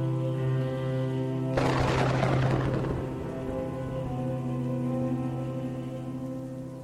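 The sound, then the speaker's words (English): Rain patters onto a hard surface in a sudden dense wash that swells for a second or two, then thins out beneath a steady, sustained musical drone. No one speaks. “this time I dreamt about rain. Only rain.”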